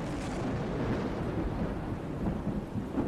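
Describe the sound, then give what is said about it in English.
A heavy thunderstorm at sea rumbles on without pause, deep rolling thunder blending with a steady wash of rain. The noise stays loud throughout, and no voices are heard. “During the journey, a heavy storm hit and threw Fievel off the ship.”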